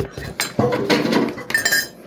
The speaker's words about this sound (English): I'm going to dilute it with apple juice. I'm going to pour just like a whole bunch of apple juice in this. There you go.